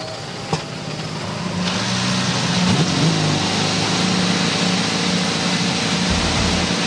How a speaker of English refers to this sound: Ladies and gentlemen, on behalf of all the IndyCar fans here at Road America, drivers, please start your engines.